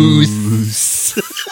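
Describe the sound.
A voice hums a low note, then breaks into a sharp, drawn-out hiss like a pantomime villain's, lasting under half a second, followed by a few faint vocal clicks.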